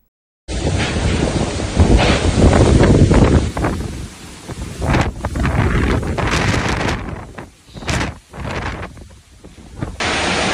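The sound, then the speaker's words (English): Roaring, gusting wind from Hurricane Ian batters a microphone amid rushing, churning floodwater at a house in southwest Florida, a loud continuous storm din that surges and dips over about ten seconds with no voices. “Hurricane Ian, one of the most powerful storms ever recorded in the United States, swamped southwest Florida on Wednesday, turning streets into rivers, knocking out power to 2 million people, and threatening catastrophic damage further inland.”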